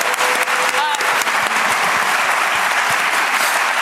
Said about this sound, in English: Thank you. Give him all a round of applause. Give him your honorific.